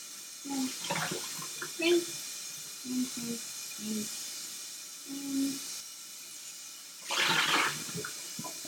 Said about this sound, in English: Rinse. Get all the soap off of the pot. Rinse.